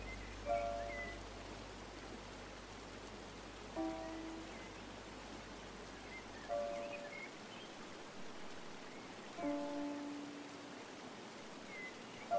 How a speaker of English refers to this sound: As you float, you just gently allow yourself to hear the water flow. It feels so natural, and you know that it's carrying you perfectly on your journey.